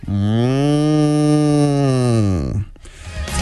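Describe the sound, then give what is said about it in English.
A person imitates a cow's moo: one long, loud, steady lowing call held for over two seconds, dropping in pitch at the end, followed by a short breath. “I'm very proud of my moo sound effect. I feel like I have a very good moo.”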